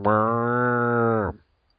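A single long, loud moo held at a steady pitch for just over a second, then cutting off abruptly into silence.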